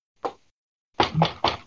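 Knocking on a door: one solid knock, a short pause, then three quick raps in a row, fairly loud, with no talking.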